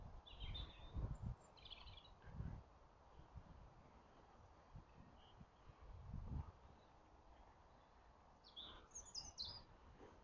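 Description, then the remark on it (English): Birds chirp outdoors in short, scattered bursts, a few near the start and a brighter cluster at the end, over soft low rumbles and rustling. No one speaks. “You hear the birds? Hope you can hear the birds.”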